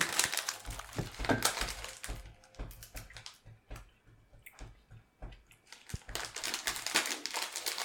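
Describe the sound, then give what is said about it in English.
Crisp crunching of little glass-like chips with sharp crackly bursts, loud at the start and end with quieter scattered crackles in between. No one speaks. “They are little glass chips.”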